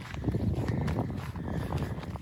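Horse hooves clip-clop along a worn path in a steady rhythm, with wind rushing across the microphone the whole time.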